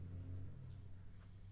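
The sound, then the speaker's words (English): A truck's deep, steady engine rumble drones right outside a house, low-pitched and continuous throughout, heard somewhat muffled, with no voices. “You hear that truck right outside of my house?”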